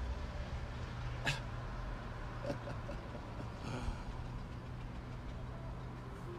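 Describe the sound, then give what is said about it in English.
A rough, rumbling engine of an old blue Cadillac drones steadily as the car drives by, its low uneven growl broken by a few sharp clicks and knocks. No one speaks. “There's this old, shitty old blue car just drove by. It's a sick old car, though. It's a Cadillac.”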